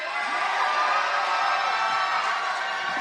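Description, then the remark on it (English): A large crowd at a campaign rally cheers and claps steadily, a dense wash of applause with scattered whoops and shouts rising above it, loud and sustained from start to finish. “Big round of applause.”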